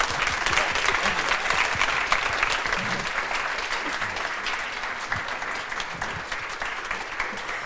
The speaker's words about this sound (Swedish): En varm applåd för panelen.